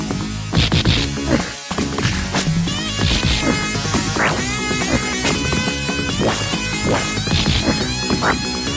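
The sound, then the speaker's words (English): Loud, buzzy FM-synth music from a 1994 side-scrolling Sega Genesis beat-'em-up developed by Acclaim Studios Manchester plays nonstop, layered with punchy percussive hits and crashes, with one brief dropout early on and no talking. “Hop it to the 94, playing on the Genesis.”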